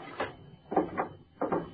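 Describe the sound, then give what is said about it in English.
A drawer holding a flashlight is pulled open in a few short, scraping wooden bursts, three uneven rattling slides of moderate loudness with brief pauses between them and no voices. “Look in that drawer over there.”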